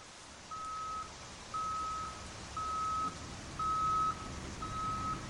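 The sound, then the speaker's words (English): A tow truck's reversing alarm beeps five times at a slow, steady pace, each tone about half a second, over a constant low rumble of engine and ambient noise, as the truck winches a 30-year-old teal Alfa Romeo convertible onto its flatbed in the rain. “The skies opened up as I watched the tow truck winch my teal Alfa Romeo onto the flatbed.”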